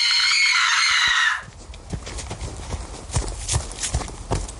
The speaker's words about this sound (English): At her wit's end, Lady Liberty screams and runs off.